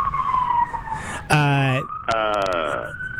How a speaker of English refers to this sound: I hear him. That's not a drop, by the way. That's an actual cop car driving past the station.